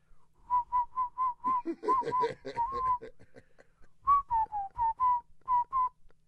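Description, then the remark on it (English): Someone whistles a bright melody imitating a flute, a string of short, evenly spaced notes with a brief murmur of voices partway through before the tune resumes. “I actually can whistle with the flute.”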